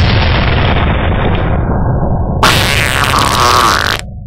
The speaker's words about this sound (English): So, all right, let's throw in a little fart cannon.